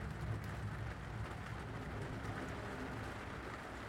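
Steady rain drums against car windows from all sides, a dense, even patter with a low rumble underneath, continuous with no voices.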